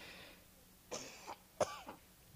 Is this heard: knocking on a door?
no